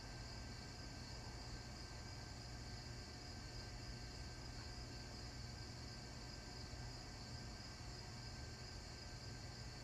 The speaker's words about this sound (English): I really hope the crickets are showing up on here. I want the crickets in the background. I want cricket ambiance.